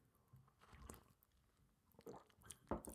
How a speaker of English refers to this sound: So, in preparing for today's episode, pardon me, I need to take a sip of my tea here.